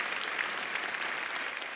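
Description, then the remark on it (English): A church audience claps their hands as an amen in steady, dense applause, a continuous wash of many overlapping claps at an even loudness with no talking over it. “Come on, can we say amen to that by clapping our hands?”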